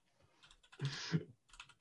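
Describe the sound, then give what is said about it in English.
Quick, irregular clatter of keys being struck on a computer keyboard while checking a film's release date, with a denser burst of rapid typing in the middle and lighter taps at either end. “Are you typing up Us?”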